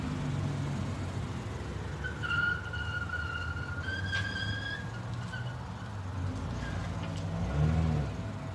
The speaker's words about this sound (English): one second, there's a car.